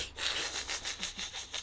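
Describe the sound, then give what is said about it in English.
A person imitates the cartoon dog Muttley's wheezing snicker: a quick run of breathy, raspy huffs in a steady, sawing rhythm, moderately loud with no talking over it. “Yeah, it's a very like breathy snicker.”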